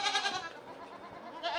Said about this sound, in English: It's feeding time at Round Mountain Creamery, and the farm's 300 goats are hungry.